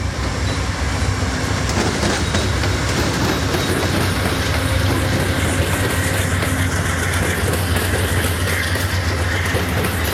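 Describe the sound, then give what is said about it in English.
A train rumbles past, its steady low roar and rhythmic clatter of wheels filling the whole stretch at a constant loud level, with no voices. “Train coming, just hold on here.”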